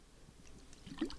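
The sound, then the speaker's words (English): A quiet sip of CBD sports water, with faint wet liquid sounds building to a short slurp near the end; no one speaks. “And I've been sipping on this because I did my yoga this morning. Our Fusion CBD sports water, everything CBD.”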